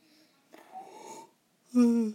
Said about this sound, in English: Sorry for the yawn. I'm trying to keep things moving along without getting tired.